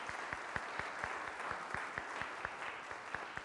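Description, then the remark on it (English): A round of applause from a crowd for young acolytes: steady, dense clapping that holds for several seconds, with a regular beat of sharper claps running through the wash of sound. No one speaks. “So if you would please give them a round of applause.”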